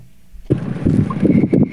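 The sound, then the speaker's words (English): A small runabout boat out on the water: after a brief hush, a loud, steady rush of wind and splashing water starts abruptly and continues. “I'm out on my little runabout.”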